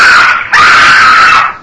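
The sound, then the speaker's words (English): A loud animal-like yowl in two parts: a short cry, a brief break, then a longer wail that holds a steady, piercing pitch before trailing off. No one speaks. “A yowl like that of an animal awakened me.”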